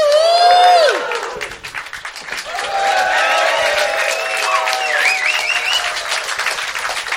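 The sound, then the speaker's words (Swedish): A live crowd erupts in loud cheering and dense applause, with shouts and whistles rising over steady clapping that dips briefly, then swells again and carries on for several seconds. “Hur är läget, publiken?”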